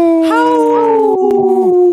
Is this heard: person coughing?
no